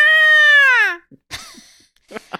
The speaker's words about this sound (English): I've never heard a peacock make a noise. So they sound like a cross between like a woman yelling and a baby crying. It's very ah. That's what peacocks sound like.